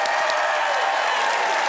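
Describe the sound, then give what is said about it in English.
Steady, dense applause from a large studio audience, many hands clapping together in a continuous loud wash with no break and no voices standing out. “Just a big round of applause, please.”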